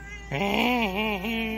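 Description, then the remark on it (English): A single drawn-out, wavering meow starts after a brief pause and holds steady and loud until the end, with no other sounds around it. “Your cat videos broke the internet.”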